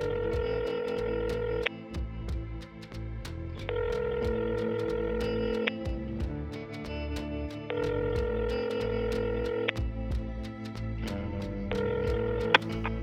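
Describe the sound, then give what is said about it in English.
A phone line rings on an outgoing call: four evenly spaced ring tones, each lasting about two seconds with pauses between, clear and steady over a constant background hum. “You go ahead, you make your phone call, and pretty quickly you hear...”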